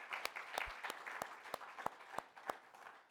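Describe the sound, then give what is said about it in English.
An audience breaks into applause for God: a dense, steady wash of many hands clapping, with a few sharper, louder claps landing at a roughly regular beat throughout. “So let's give God a round of applause for that.”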